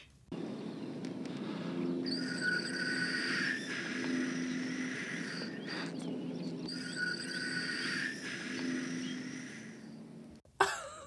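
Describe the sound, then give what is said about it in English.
A wax 'wowie' whistle, a Halloween favor, blown by Nick Cage in a film scene in two long, sustained blasts, breathy and slightly wavering with a hollow, haunting tone over a steady low rumble, ending in a brief sharp knock. “He pulls a wowie whistle out of his shirt pocket and blows into it while the two friends stand staring over the bluff.”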